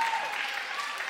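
A steady round of applause from the audience at Christ Church of Orinoco, many hands clapping densely and evenly at moderate volume for just over a second, with no voices standing out.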